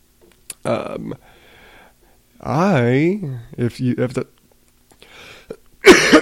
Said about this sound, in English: If the title and the coughing haven't tipped you off, of course, I'm still kind of sick.